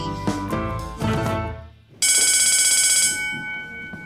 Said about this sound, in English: And that's the bell, so we'll continue our lesson after recess.